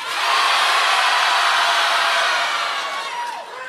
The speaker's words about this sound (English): So we thought it'd be fun if on the count of three, so you can hear your own voice and your own name on the podcast, we want everybody here to yell your own name as loud as you can.